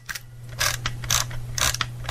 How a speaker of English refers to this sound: That sounds like winding film, like putting a little Kodachrome in my camera. Yes, indeed. That's winding an old school camera.